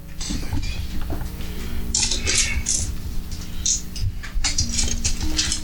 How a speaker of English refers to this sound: Oh, I'm hearing lots of dice. One. 3, 7, 10, 16, 24, 29 points of damage.